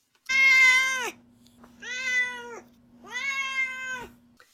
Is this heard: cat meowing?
yes